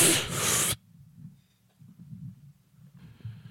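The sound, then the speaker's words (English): A person takes a deep inhale during a breathing exercise: a loud, breathy rush of air lasting under a second, then a quiet, low rumbling background. “All right, now exhale. Much better. I feel much better. Do you? Good, deep breathing exercise.”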